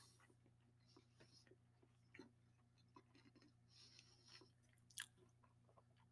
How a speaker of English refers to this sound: I chewed up my cookie, let that sink in for a little bit.